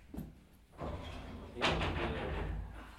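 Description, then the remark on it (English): A door slides shut partway through, its sudden scraping rush holding steady and fairly loud over a low rumble, after a softer shuffle of movement at the start. “Like sighing as I closed the door.”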